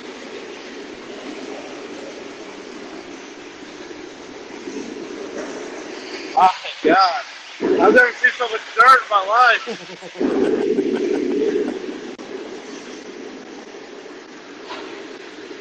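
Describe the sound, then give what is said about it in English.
A freight train loaded with dirt, with graffiti on its side, rolls past on the tracks, a steady, continuous rumble that holds even throughout, while a person exclaims loudly over it partway through. “This has got to be the last train. This ain't no Amtrak.”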